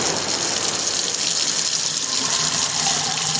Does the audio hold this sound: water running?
yes